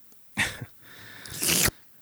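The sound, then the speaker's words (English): A voice imitates loudly sipping water, with a short wet burst and then a long, noisy slurp that swells into a harsh hiss before cutting off, with no talking. “Yeah, that's him sipping up fucking water like a psychopath.”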